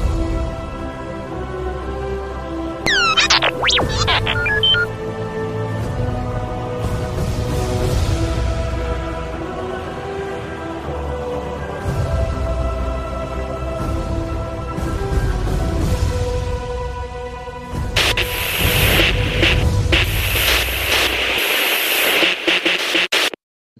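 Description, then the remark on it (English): Loud, continuous radio static with a crackling hiss, broken early by a few warbling electronic chirps and rising to a harsher burst of white noise near the end before cutting off. No voices. “Ready to send that transmission to Echo Base?”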